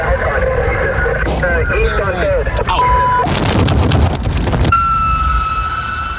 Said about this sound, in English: they blow a stop sign and get T-boned by another cop running a stop sign